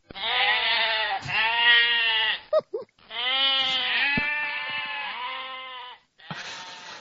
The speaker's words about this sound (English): Aw. Those are some coffee-drinking goats. That's pretty crazy.